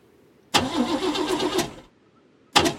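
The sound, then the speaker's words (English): A car engine cranks loudly for about a second with a rough, rhythmic churn, then cuts out. After a short quiet pause, a second restart attempt begins abruptly. “Charlotte, turn it off and then turn it back on again.”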